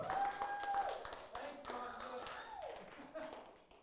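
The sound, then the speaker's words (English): An audience breaks into applause for the worship leader, a burst of scattered hand claps, with some murmuring voices and a faint tone running underneath. “Give him a hand clap.”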